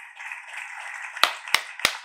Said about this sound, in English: Ooh, 29. Get yourself a hand clap out there.